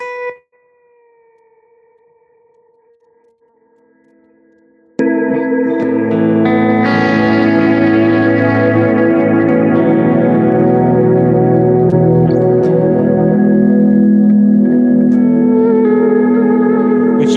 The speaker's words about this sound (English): But there are sections in the song, especially very worshipful moments of the song, where there's all these different moving type pad type things in a record. And so what I do is I'm always doing these whale sound type things, right?